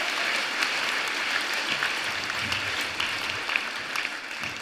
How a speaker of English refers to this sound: Good work, everyone. Give yourselves a little round of applause.